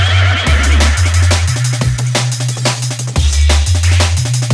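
A sampled horse neigh rings out over a loud, thumping beat with a deep stepping bassline and sharp drum hits. No one speaks.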